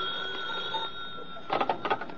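A telephone bell rings with a steady, shrill tone, then breaks into a burst of rapid metallic trilling near the end. No one speaks.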